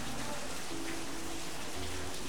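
rain falling outside

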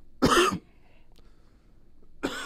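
cough

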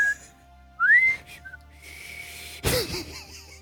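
person whistling

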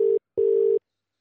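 phone call ringing tone

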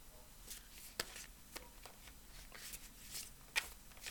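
tarot cards being shuffled

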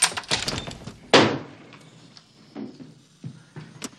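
door opening

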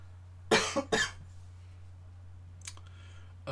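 cough

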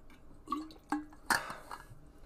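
sipping a drink

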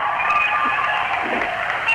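crowd cheering and applauding

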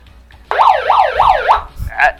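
police siren sound effect

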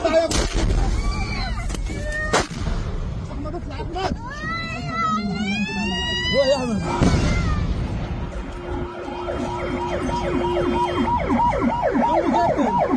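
sirens wailing

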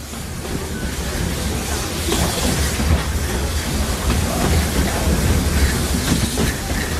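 train running on rails

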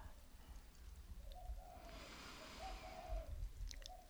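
birds calling outside

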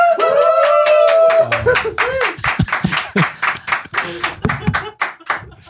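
round of applause

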